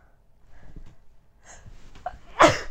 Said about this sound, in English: Oh, I had to sneeze, I think.